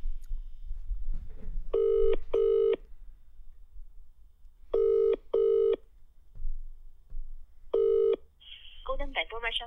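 A telephone ringing tone sounds in steady buzzy double bursts, repeating three times over low background rumble, as a call is placed to a restaurant, followed at the end by a brief warbling electronic tone as the line connects.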